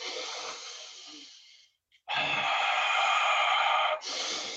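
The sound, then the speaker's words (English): A person demonstrates deep, slow breathing into the microphone: a long, loud airy exhale, a brief pause, then a strong, sustained inhale followed by another breath, with no talking. “You know, this is not when you whip out your Wim Hof breathing.”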